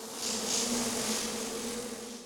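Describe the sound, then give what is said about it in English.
A steady, dense insect drone of millions of cicadas sitting in trees singing their mating chorus, a continuous buzzing hum with a high shimmering wash, fairly loud and unbroken throughout with no voices. “When there are millions of cicadas sitting in trees singing their little sexy mating song, well, it can be pretty noisy.”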